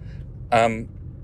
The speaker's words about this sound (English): My car just beeped. I wonder why it just beeped.